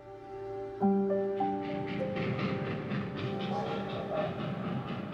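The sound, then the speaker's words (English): A train whistle blows in long, steady, chord-like tones for several seconds, layered over a continuous rumble of rolling rail cars, as heard from a second-story window of a Barnstable County jail cell in 1901; no one speaks. “Forty-four-year-old Jane Toppan could hear the train whistle from her second-story window.”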